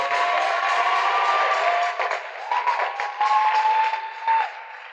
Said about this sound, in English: Yes, clap for Jesus.